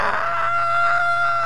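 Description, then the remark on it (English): A person imitates the scream-crying of a toddler who fell over off a cat hammock and bumped her head, with one loud, sustained, high-pitched wail held for about a second and a half, steady, with no other talking. “And she fell over and bumped her head. And she's, you know, how toddlers, like, scream, cry.”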